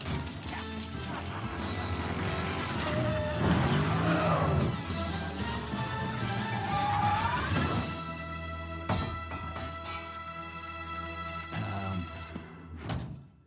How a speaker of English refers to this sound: I just wanted a longer car chase. It's the best part.